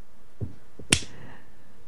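A single sharp, crisp slap as a person slaps their own forehead rings out after a couple of soft, dull thumps, then quickly fades. No one speaks.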